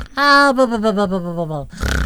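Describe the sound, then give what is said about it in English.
A voice imitates snoring with one long, loud, buzzy groan that slides gradually down in pitch, followed by a brief breathy, rasping snort. “Not that you snore, but I hear...”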